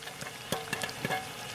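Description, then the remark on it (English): Popcorn popping in a pot: a handful of sharp, irregular pops burst over a steady, faint sizzling hiss, with no voices. “Palomitas de maíz! Oh no, they're flying everywhere!”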